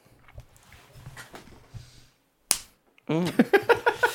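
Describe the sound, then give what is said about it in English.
A single sharp slap on a person's outstretched hand cracks out loud after some quiet, low talking, and is quickly followed by loud, pulsing laughter-like vocal bursts. “That was well, me no, slapping like, his hand.”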